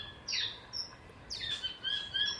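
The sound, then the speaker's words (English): Saddlebacks on an island call back and forth in a series of bright, chattering whistles, several overlapping notes over a soft background hiss, with no voices present. “So there are other saddlebacks responding at the moment.”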